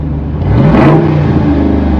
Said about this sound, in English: Yeah, I don't plan on changing that anytime soon. No, I wouldn't change that at all. That's an active exhaust on the 392. It's pretty awesome.